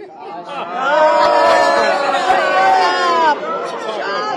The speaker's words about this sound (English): So, at a press conference, a reporter asked Representative Johnson about leading efforts to overturn the results of the 2020 election, and that reporter was actually booed by surrounding segments of the GOP caucus. You can hear it here.